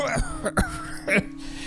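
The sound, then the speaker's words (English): Someone lets out a series of rough, hacking coughs after taking too big a hit while smoking. About three harsh bursts are spaced across a couple of seconds, fairly loud, and seem to be acted out by a voice. “I'm like, Tippy's like still smoking, and he's just like coughs up like he took way too big of a hit as he was saying that, and he's just hacking up along.”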